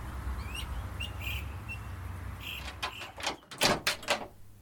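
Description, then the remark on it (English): A door opens with a short series of scraping, rattling bursts over a steady low hum, preceded by a few faint chirpy squeaks. “As the door opens, Mark sees a man dressed in leather, dripping wet and breathing hard.”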